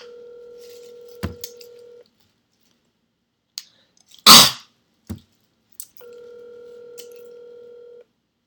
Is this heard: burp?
no